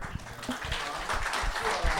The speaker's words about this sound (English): Yeah, you clap. You clap. We see you.